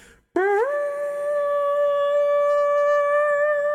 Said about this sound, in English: Then Boromir raised his horn and blew. Loud the challenge rang and bellowed, like the shout of many throats under the cavernous roof.